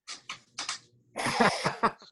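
A few short, sharp breaths build up before a loud, noisy sneeze bursts out and trails off in a couple of rough exhalations, with no talking.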